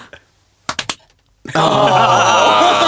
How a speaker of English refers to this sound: We could check out with the clap. Oh, a synchronized clap. A synchronized clap. A remote clap.